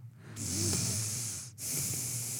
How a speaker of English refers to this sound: Am I breathing like that? No, but he say, put a reminder in your phone. Oh, gotcha. I was thinking, my goodness, I didn't realize I was breathing that heavy.